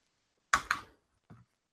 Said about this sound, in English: You're smashing the keyboard. Calm down, mate. No, because I keep changing the year. You're going da da da.